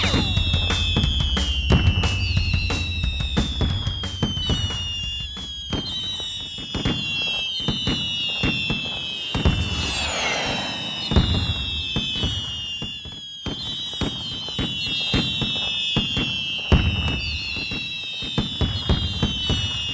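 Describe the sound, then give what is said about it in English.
Fireworks go off in a rapid, continuous barrage of loud bangs and crackles, with shrill whistling rockets streaking overhead and a dense crackling burst midway through. “every time the fireworks start, just makes me giggle like an idiot.”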